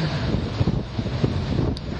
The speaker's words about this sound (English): It's quite windy here, I can see.